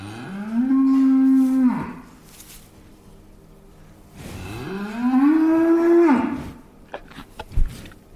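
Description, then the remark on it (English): Two long, loud moos from dairy cows in a milking barn on a farm in northern Denmark, each lasting over a second, with a pause between them, followed by faint barn clatter and knocks; no one speaks. “This is where we walk through to the milking barn. That's what you can hear in the background.”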